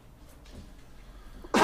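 A sudden, loud, harsh throat clearing bursts in right at the end, after a stretch of quiet room noise.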